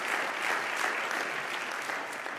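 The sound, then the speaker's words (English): At the preacher's invitation, a church audience claps together in sustained, dense applause, many hands blending into a steady wash of sound that holds at an even level throughout, with no voices standing out. “Would you clap your hands with me?”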